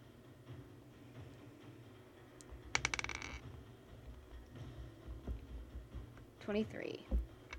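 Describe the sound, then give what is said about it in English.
Dice clatter across a table in a short, rapid burst of sharp rattling clicks, rolled for a persuasion check in a tabletop role-playing game, with faint voices murmuring in the background. “Thank you, little dice.”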